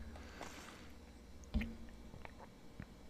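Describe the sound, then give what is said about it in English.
Quiet gulping as a person takes a quick drink of water: one distinct swallow midway, surrounded by faint wet mouth sounds and small clicks, with no talking. “I'm gonna take a quick drink of water though, and I'm not cutting this. So you're gonna get some quick water gulp ASMR, like right now.”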